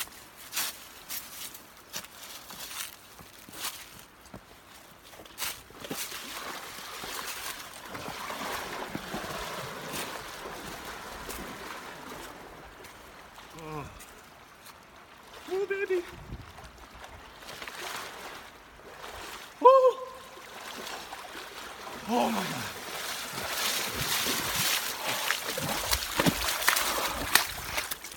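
Someone wades and swims in the river water at Gangotri, at the source of the Ganges River, with sloshing and splashing over a steady rush of flowing water, and a sharper, louder splash near the end.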